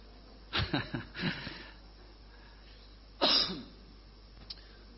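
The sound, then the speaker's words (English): A quick run of three or four harsh, raspy coughs, then a pause and one louder, sharper cough, followed by a faint throaty catch. No one speaks. “I told someone at some point someone's going to bring me some water because of this dumb cough of mine.”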